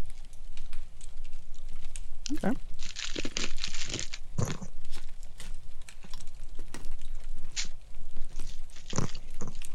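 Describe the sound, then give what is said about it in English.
Loud crunching of a hard holiday candy in a series of sharp, irregular bursts, mixed with crinkling, with quiet mouth sounds and murmured voices between chews. “Got a good crunch factor.”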